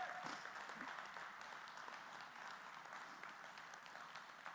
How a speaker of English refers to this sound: Come on, let's just clap that in and declare it.